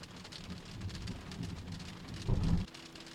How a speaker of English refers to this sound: Ooh! Flashes of thunder. Can you hear that? That's thunder and lightning. Wow.